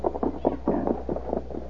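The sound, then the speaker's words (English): Horse hooves clip-clopping in a quick, steady rhythm, a run of muffled thuds with a low background hum and no voices. “Back to the horses.”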